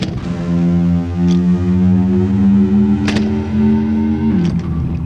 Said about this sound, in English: When we talk about climbing an octave, we say scale. A scale is a ladder of tones between the octave. And, like skinning a cat, there's more than one way to get up to the octave. But the best known ladder, the best known scale, sounds like this.